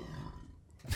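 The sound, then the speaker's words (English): A long, low, rumbling burp, rough and throaty, trailing off before a short burst of breathy noise at the end. “Yeah, I interject stories with a burp usually because that's where you can get a break.”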